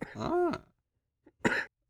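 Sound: coughing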